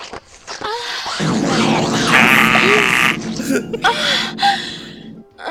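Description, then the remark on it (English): A woman's breathy moans and gasps lead into a long, loud, reverb-drenched fart sound effect, a low buzzing rumble that sustains for about four seconds before trailing off. “can you hit me with the girl moaning into reverb fart?”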